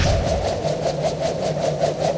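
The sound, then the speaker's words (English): A man in an interview imitates the fluttering sound of a hovering craft, which he likens to a helicopter but much quieter: a steady, low, engine-like drone with rapid, even pulses, roughly five per second, held without pause and with no words. “A fluttering sound, which he actually does an imitation of.”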